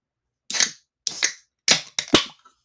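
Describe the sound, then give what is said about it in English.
Drinks being opened: four sharp cracks in quick succession, each followed by a brief bright fizzing hiss, with the last two close together. No one talks. “Should we open them?”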